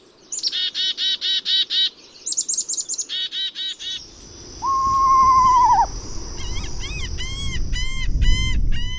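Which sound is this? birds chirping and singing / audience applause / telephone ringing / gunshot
birds chirping and singing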